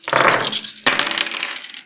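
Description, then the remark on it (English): Heavy dice clatter across a hard table in two loud, rattling bursts as a player makes a mobility roll in a tabletop game, the second tumbling and skittering to a stop, with no voices over them. “I really shouldn't have just brought my heaviest dice, should I, for a podcast?”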